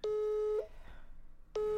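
A telephone busy tone after a call is rejected: a steady electronic beep lasting about half a second, a pause of roughly a second, then the tone starts again. Clear, with no voices.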